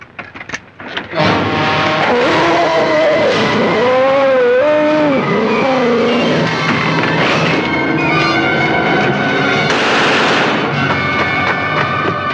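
A heavy door grinds open with a loud, sustained metallic creak and wavering squeals, rumbling steadily for about eleven seconds, with no voices.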